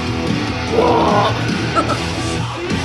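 A harsh screamed vocal rises over a dense wall of heavily distorted music, loud and continuous, with the yelling most prominent early and then blending into the roaring instruments.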